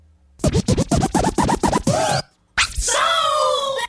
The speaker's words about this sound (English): The old helicopter scratch. What is that? What is that sound? I don't know. It's hard to say.